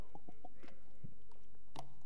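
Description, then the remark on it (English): A quiet sip from a drink during a pause in a Bible reading: a few soft, wet mouth clicks and a low gulp, ending in a brief sharper click, with no talking. “I'm going to pause, take a sip, because that statement is very powerful.”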